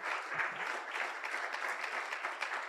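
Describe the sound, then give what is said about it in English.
An audience gives God a round of applause, a dense wash of many hands clapping at once with no clear rhythm, holding a fairly even, moderate level throughout with no talking over it. “Can we give God a round of applause for that revelation today?”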